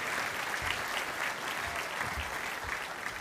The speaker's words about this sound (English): Thank you very much for that welcome and that applause. You know, applause like that.